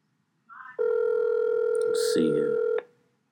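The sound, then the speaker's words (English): A short electronic blip, then a steady phone tone that holds for about two seconds as a call to the speaker's nephew rings through on the line, with a faint voice briefly underneath. “Let me call my nephew real quick, man. See if he pick up.”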